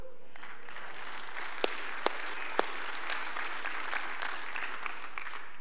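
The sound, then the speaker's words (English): An audience applauds steadily for several seconds to celebrate the 3,144 individuals an organization rescued last year, a dense, even wash of clapping with a few sharp, louder claps standing out, though little cheering or shouting is evident. “I mean, I think we cheer louder at football games than we cheer for 3,144.”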